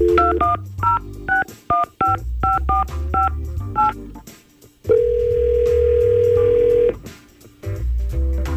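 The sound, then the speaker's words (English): Telephone keypad tones as a phone call is dialed: a rapid series of about a dozen short beeps in an uneven rhythm, followed by a steady ringback tone lasting about two seconds, then a few more beeps. “so we're going to try and get her on the phone and hopefully get him some answers.”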